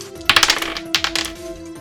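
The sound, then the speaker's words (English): Dice clatter across a hard tabletop in two quick bursts of rattling clicks as damage dice are rolled twice in a tabletop role-playing game, fairly crisp, with a faint steady hum beneath and no talking. “Damage by 2, double the amount of dice you roll.”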